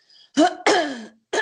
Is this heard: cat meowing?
no